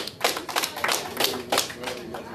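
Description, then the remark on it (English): An audience breaks into applause, many hands clapping in a brisk, uneven patter that holds at a moderate level for a couple of seconds. They clap for the Chiefs winning the Super Bowl as their favorite moment of 2020. “Clap that shit up.”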